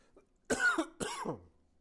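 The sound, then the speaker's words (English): Two quick, harsh coughs in close succession, the second rougher and trailing off, with no talking around them. “I've got a cough here, so I want to tell you, if I cut out bits and pieces here, I'm just cutting out my coughs.”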